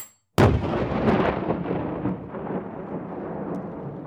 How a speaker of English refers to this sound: Harry cackled and tossed a small object out into the center of the great hall. Every eye in the room followed the object, which exploded in a flash of light when it hit the side of the Ravenclaw table.